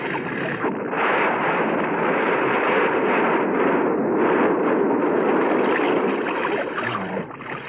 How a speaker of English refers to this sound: I never saw a bus blow before.